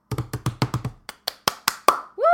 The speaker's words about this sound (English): Round of applause.